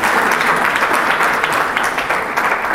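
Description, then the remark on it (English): An audience claps steadily and loudly for Madikolo, the University of Botswana, a dense wash of many hands with no pauses, holding the same level for the full few seconds. “Can you give a great hand clap for Madikolo?”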